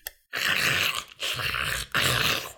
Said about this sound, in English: They heard everything, though. The gnashing of teeth.